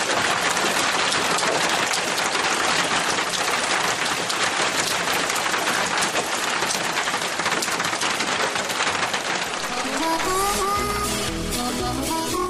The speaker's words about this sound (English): I'm going to sit back this morning, and I'm going to enjoy the rain, and I'm going to let it go for just a little bit